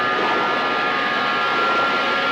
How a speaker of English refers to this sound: Here comes the Terror Train!